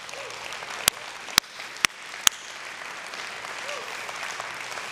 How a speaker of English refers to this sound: That's what we've been doing and what we're doing right now for the city of Austin. Why don't we just stop and enjoy that with some clapping?